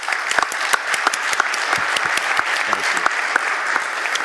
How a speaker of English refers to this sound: You just stand so we can recognize you, give you a round of applause. Thank you guys for sharing what you've done.